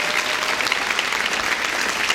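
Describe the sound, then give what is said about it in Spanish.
Steady, dense applause from an audience in Miami for the whole production team, a continuous wash of many hands clapping at an even loudness throughout, with no one speaking over it. “¿Por qué no le dan un fuerte aplauso a todo el equipo de producción?”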